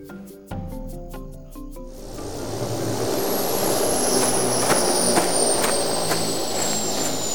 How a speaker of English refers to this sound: Now, we've landed the chopper